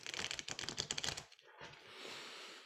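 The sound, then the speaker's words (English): A quick, crisp flurry of card-riffling clicks as a Thoth Tarot deck is shuffled, fairly quiet, followed by a softer sliding rustle as the deck settles together. No one speaks. “I'm going to do one more shuffle.”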